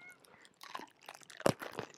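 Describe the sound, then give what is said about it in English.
A crisp bite into a pickle done as ASMR, with a sharp loud crunch about halfway through among a scatter of smaller crackly chewing snaps, and no talking. “It's a pickle crunch.”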